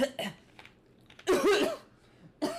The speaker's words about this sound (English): He just coughed on my drink. Just opened it and he coughs right on it.